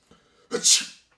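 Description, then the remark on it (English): A single loud sneeze: a short voiced intake followed by a sharp, hissing burst that fades quickly, with nothing else around it. “You wouldn't want to sneeze, right?”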